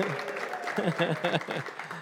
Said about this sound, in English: that's a nice scattering of applause. Give him a good round of applause.